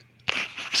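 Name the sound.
sneeze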